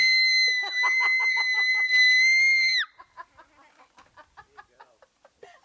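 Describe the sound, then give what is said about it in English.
A voice imitates a mother's excited screeching: a high, piercing, sustained screech for nearly three seconds, loud, then breaks into a series of short, choppy squawking bursts. “She screamed. How did she sound?”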